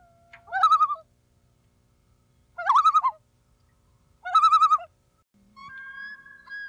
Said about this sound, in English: Nothing compares to hearing the eerie, beautiful sound of a loon echoing off a lake.